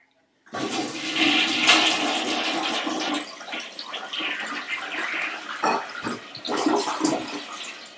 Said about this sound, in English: Well, you know what we forgot to do is we forgot to flush this thing. This is a two flusher. It is? All right. This is a double flusher. I think it's a triple flush.